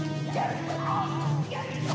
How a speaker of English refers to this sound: There's a dog that's destroying stuff, and there's a pan on fire.